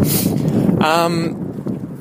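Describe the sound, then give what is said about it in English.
Wind buffets the microphone outdoors, a loud, steady low roar and rumble lasting the whole clip, with a brief tonal, voice-like sound rising partway through. “I don't know how this wind is going to be out here. It's pretty windy.”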